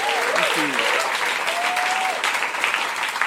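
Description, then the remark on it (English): A studio audience at The Other Palace bursts into sustained, loud applause for the writers, performers and creatives, a dense wash of clapping that holds steady throughout, with a few faint whoops rising above it. “Can we have another massive round of applause, please, for everybody involved, all of the writers and performers and creatives.”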